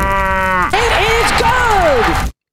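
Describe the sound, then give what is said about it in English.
A single loud cow moo sound effect lasting a couple of seconds, starting steady and then breaking into a strained, wavering bellow that slides up and down before cutting off abruptly. “That moo sounds like it's really struggling, by the way, Taylor.”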